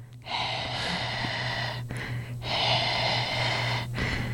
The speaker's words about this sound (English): since I still have a bit of the congestion, I think I can do the heavy breathing to go with Oh Death